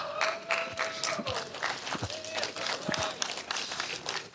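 A crowd applauds steadily for several seconds, dense overlapping claps filling the room, with a few voices cheering and whooping over the top.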